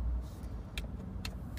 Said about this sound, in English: Especially since that UPS truck rolled up.